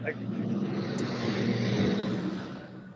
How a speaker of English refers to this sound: Did you just leave in a car? Sorry, that was a very loud truck that drove by.